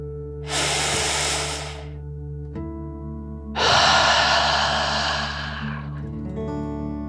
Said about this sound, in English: Breathe in through your nose, filling up your lungs, and then out through your mouth, imagining you are breathing fire like a dragon. Ready? Deep breath in and out.